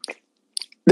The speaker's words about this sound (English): I just had to crack the can. And now I'm going to take a sip.